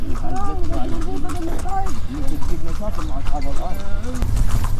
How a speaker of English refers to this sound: Smells good. Smells very horsey. Lots of horses around.